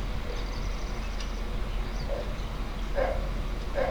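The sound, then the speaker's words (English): Three short, mid-pitched dog barks at uneven intervals, growing slightly stronger toward the end, over a steady low background hum with no talking. “Listen to your dog.”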